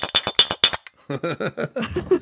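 A glass bottle taps against a shot glass in four quick, bright clinks, ringing briefly. After a short pause, someone starts talking.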